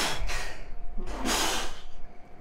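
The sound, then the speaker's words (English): Two sharp, breathy sneezes burst out about a second apart, each a quick explosive rush of air, with no talking in between. “Bless you.”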